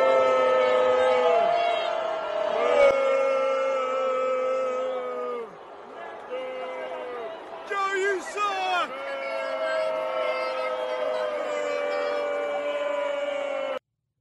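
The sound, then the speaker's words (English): A crowd boos President Biden in long, sustained, droning vocal tones that swell and overlap for about fourteen seconds, with a brief burst of louder shouting partway through. “I'm going to play it again, and then you would definitely hear the rest of the crowd booing.”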